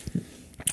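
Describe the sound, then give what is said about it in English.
Sticky chewing of a thick caramel candy: a few soft, wet squishes and smacks in quick succession, quiet, with no talking. “Look how thick the caramel is. Wow. I need to hear the thickness in your mouth. Give us a chew factor.”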